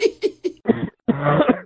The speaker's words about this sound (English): Oh, here we go with the fake coughing again.